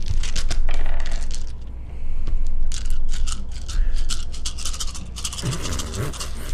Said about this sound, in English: Just the sound of this gigantic dice pool. It's pretty bad. Yeah, it's horrible.